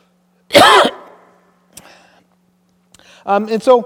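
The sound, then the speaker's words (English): A single loud cough bursts out, followed by a softer catch of breath and a short voiced throat sound, over a faint steady hum. “I'm going to cough here.”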